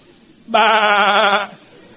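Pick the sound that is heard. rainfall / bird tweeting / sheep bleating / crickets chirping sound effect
sheep bleating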